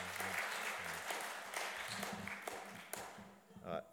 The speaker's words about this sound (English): So I think he deserves a round of applause now. Thank you very much indeed.